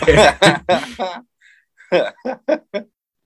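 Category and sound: vocal imitation, person imitating goose honks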